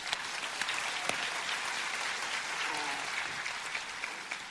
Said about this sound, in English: You can give them applause.